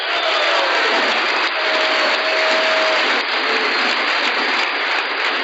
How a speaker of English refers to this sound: You're clapping for yourselves.